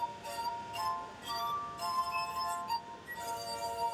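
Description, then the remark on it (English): Fingers rub the rims of a glass harp, water-filled stemmed drinking glasses of different sizes, played in Alexandria, drawing sustained, eerie ringing tones at several pitches that overlap and shift into a slow melody, steady, with no talking. “Turner makes music by running his fingers over the tops of the glasses.”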